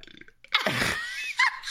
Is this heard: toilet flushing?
no